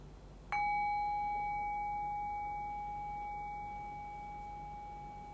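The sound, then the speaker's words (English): A single meditation bell is struck once and rings with a clear, steady tone that slowly fades over several seconds. It is alone, with no voices or other sounds. “Allow the fading bell to gently guide your awareness into silence.”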